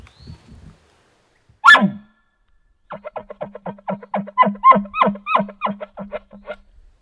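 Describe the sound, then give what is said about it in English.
A hunter's elk call makes a single loud, sharp, clear bark, followed after a short pause by a rapid, rhythmic string of about a dozen chuckle calls, with no talking. “And then the bark with the chuckle.”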